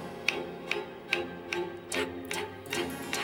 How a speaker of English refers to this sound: listen to that opening clip again and grab our rhythm sticks this time and keep a steady beat to help us stay warm. You can pretend to be cold while you listen. Can you keep the beat with your rhythm sticks?